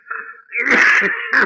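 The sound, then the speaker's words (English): A thin man sitting on the edge of a bed pulls a bandana out of his pocket and coughs, starting with a raspy, wheezing intake of breath, then a harsh, drawn-out hack and a second short burst right after. “All of a sudden, he pulled a bandana out of his pocket and began coughing.”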